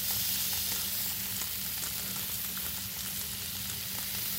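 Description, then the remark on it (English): Steady, crackling sizzle of oil-poached sunchokes searing in a little hot oil in a pan to get some color and a crunchy skin, a dense hiss with scattered pops and a low hum underneath, continuous throughout with no talking. “In terms of time, once your sunchokes are searing in your pan, a little bit of oil underneath.”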